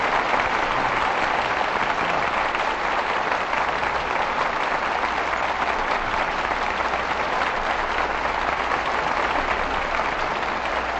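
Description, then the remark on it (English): Sustained audience applause calling Bing Crosby and Anne Blythe back for a curtain call, with steady, dense clapping at an even loudness for about eleven seconds, a continuous wash of hands with no voices standing out. “Your applause calls tonight's stars back to the footlights.”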